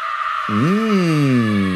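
A single loud, sustained scream sound effect for a Halloween show bursts in abruptly after a brief pause, its pitch sweeping up quickly and then sliding slowly downward as it holds, over a steady background hiss.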